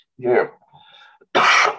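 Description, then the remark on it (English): A chesty cough from someone who has had it for the last few days: a short, throaty rasp, a brief pause, then a louder, harsher burst of coughing that ends the moment. “Pardon me, I've had a little bit of a chesty cough the last few days.”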